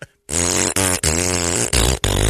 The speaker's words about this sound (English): It sounds like an orchestra pit tuning up, only it's all fart noises.